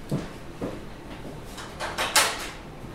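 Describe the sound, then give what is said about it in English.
A door in a pub is unlocked and opened: a handful of sharp clicks and rattling knocks spread over a few seconds, ending in a brighter metallic scrape, with no voices. “You're unlocking the door now.”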